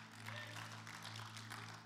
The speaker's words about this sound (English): Thanks for that. Give them a hand clap.